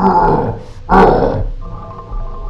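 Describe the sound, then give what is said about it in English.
Deep, rough grunting and groaning from behind a closed door, swelling into one loud, harsh outburst partway through before settling into a lower, steadier moan. No one speaks. “You still hear the grunting and the groaning.”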